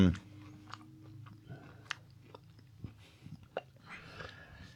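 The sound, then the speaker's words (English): Chewing of a soggy cookie that was dunked in a drink: soft wet mouth smacks and small squishes come at an irregular pace over a low steady background hum, with no talking. “He's hoping it'll just fall apart and he won't need to chew it.”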